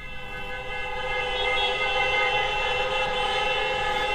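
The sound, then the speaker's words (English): A dense chorus of car horns blares continuously on Michigan Avenue moments after the Cubs win, recorded on a phone, many overlapping tones merging into one loud, sustained wall of honking that swells slightly and holds steady. “That is the chorus of horns that went on.”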